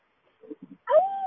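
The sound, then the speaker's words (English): A dog named Margaret barks in the background, getting angry about the seals: a few soft, low huffs, then one sharper, whiny bark whose pitch rises and holds briefly. No one speaks. “Margaret's barking in the background and getting angry about the seals.”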